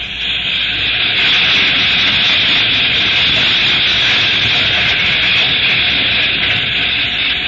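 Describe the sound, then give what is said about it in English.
A slow freight train with its headlight on passes by, its loud steam hiss rushing steadily and evenly for the whole stretch with no speech. “Here comes the freight.”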